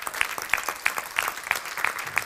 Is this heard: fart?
no